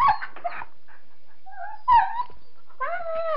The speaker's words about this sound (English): That puppy was in a lot of pain, so I feel good because today I think maybe I saved a life from being totally ruined in some way, because we have been seeing this puppy for last 3 days.